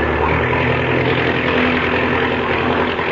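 A loud, steady roar of an aircraft engine running at full throttle, a dense continuous drone with a low, humming core that holds constant for a few seconds.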